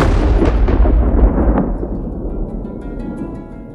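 A loud thunder crack from a lightning strike bursts out and rolls into a deep rumble that gradually fades over a few seconds, with no voices present.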